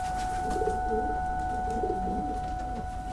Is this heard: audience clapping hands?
no